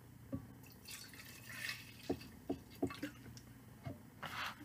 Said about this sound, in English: This is the first time we've actually tasted it. With tequila. And got my tin cup. She has her tin cup. I will pour for you.